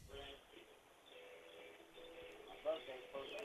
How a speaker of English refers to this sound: I hear the birds, but I don't hear you.